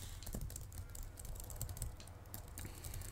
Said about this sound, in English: I know I'm on the computer typing, but please no talking.